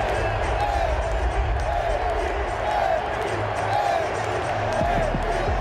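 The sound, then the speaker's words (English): A large stadium crowd of Raider Nation fans chants "AP, AP" for Antonio Pierce over and over in a steady rhythm, roughly once a second, riding on a constant loud roar of crowd noise. “You hear the chant from the crowd.”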